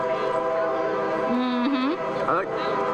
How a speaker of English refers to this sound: Cue the train noise, Greg. This is all part of my training. The train noise. I've been working on that for months to make sure I get that good timing in my podcast.